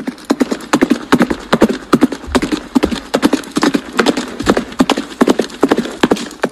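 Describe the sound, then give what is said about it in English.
Horse hooves clip-clop in a steady, fast rhythm across the whole stretch, each hoofbeat a sharp knock, loud and clear with no voices over it. “Horse riding, lasso carrying, rock stars of their time.”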